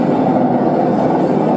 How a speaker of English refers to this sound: It's a train going by, so we gonna stop right there on that, man.